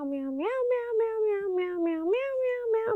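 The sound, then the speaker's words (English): A voice imitates a cat on LSD with a long, wavering meow that rises and dips in pitch over about three seconds, moderately loud, with no other sounds around it. “They salivate excessively and just bat the air for no reason. Just meow, meow, meow, meow.”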